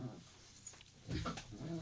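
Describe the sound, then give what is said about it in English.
Dogs whimpering and grumbling as they play-fight under a table, with short whiny yelps and scuffling breaths in a burst of a couple of seconds. “I'm going to warn you guys, Dog WrestleMania is about to start under the table where I'm recording.”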